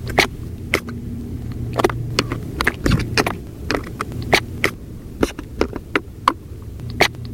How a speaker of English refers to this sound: Scallops. Clapping. On Martha's Vineyard.